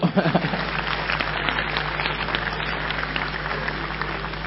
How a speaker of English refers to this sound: Clap for Jesus.